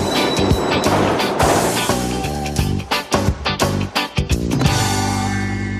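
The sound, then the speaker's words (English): A loud subway train roars along, its steady rumble broken midway by a rhythmic run of clattering pulses, with a sustained tonal whine riding over the noise. No one speaks. It is the 8-second animated subway title sequence from the first season of the TV show The King of Queens. “So it was just like a animated, like subway. You're inside the subway and outside the subway stops on brick like wall.”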